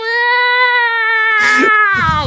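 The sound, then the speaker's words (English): A person lets out a long, drawn-out meow imitation, a steady nasal tone that wavers and falls off at the end, mixed with a breathy, raspy burst partway through. “Do I make my own cat noise, too?”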